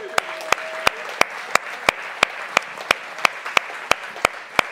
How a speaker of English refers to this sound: It's okay to clap.